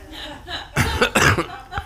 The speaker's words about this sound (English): Well, and forgive my cough. I'm sure I'm terrifying you all, and you're all going to put masks on and spray me with